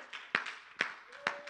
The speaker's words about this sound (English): Everybody said amen. Can we give Him a hand clap of praise before we sit down today? Lord, we love You.